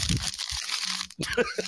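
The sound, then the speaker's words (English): A paper weather report being crumpled, a dense crackling rustle that stops briefly and then resumes in a few sharper crinkling bursts, with faint low voice-like murmurs underneath. “All right, I'm taking this weather report. Listen closely, guys.”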